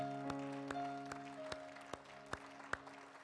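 An audience claps in praise to the Lord in a steady, even rhythm, roughly eight sharp claps, over a sustained, humming organ-like chord. The whole recording is fairly quiet, and nobody speaks.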